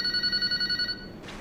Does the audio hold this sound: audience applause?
no